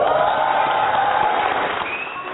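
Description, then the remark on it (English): A crowd applauds and cheers in a steady, dense wash of clapping with bright whoops on top, holding at a fairly even loudness throughout with no clear spoken words, greeting the announcement that a hotel's Christmas log cake measured 1,068 meters, over a kilometer long. “Applause and wide grins greeted word the cake had surpassed a kilometer in length, more than 3,500 feet long.”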